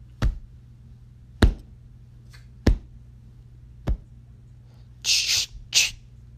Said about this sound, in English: A cocking of a gun. I turned around just in time to look down a shotgun, and then he shot it.